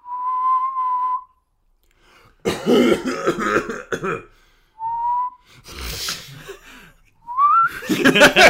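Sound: whistled bird call imitation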